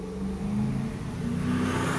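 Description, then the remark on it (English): A car engine hums steadily at moderate loudness, a low droning tone with a slight rise in pitch as the vehicle moves by, no voices present. “Y'all heard that car?”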